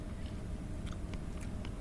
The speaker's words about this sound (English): Just try the pie. All right. Keep your hair on. Well? Give me a chance. I'm still chewing.